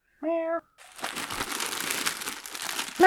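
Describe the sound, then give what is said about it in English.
A short meow, then a steady stretch of crinkly plastic rustling as a packet of tortillas for dinner is handled, continuous and fairly loud, ending with another meow. “Oh, sorry, kitty. That's just the tortillas for dinner.”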